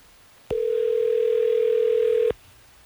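A steady, loud telephone dial tone hums for about two seconds, starting and stopping abruptly with no voices over it, as hosts of radio station Hot 101.5 place a call on air.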